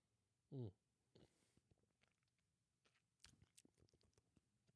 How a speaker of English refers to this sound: Let me try one more sip here.